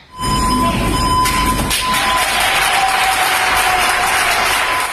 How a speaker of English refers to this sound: At a hospital in Barcelona, Spain, doctors and nurses surprised a cleaning crew with a warm round of applause.